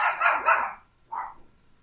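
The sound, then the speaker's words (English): Two sharp barks from dogs, a longer loud one followed after a short pause by a briefer bark, with quiet in between and no one talking. “I don't know what they're barking at.”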